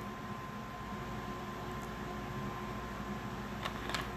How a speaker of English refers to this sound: And I mean, I've got air conditioning on full blast, and still, I just came in from outside.